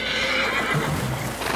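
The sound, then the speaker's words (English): A horse neighs loudly, a drawn-out whinny with a wavering, high-pitched tone, as Nez Perce horses swim the high, cold Snake River in Idaho territory, pulling hide-covered rafts across; steady outdoor background noise and faint hoof movement. “Swimming horses then pull them across, while the band's thousands of heads of cattle wait to do so as well.”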